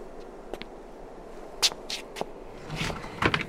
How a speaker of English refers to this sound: He reaches the bottom, and there's a door right at the end of this stairwell. We see Mahira watching from a distance from the top of the stairs, and Raja knocks on the door.